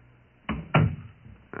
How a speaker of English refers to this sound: Close the door